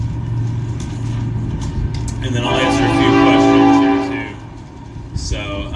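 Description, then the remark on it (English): A train passes with a low rumble and a loud, sustained horn blast that swells for a couple of seconds before fading, while a person keeps talking over it. “Got the train coming, so I'll get a drink right now.”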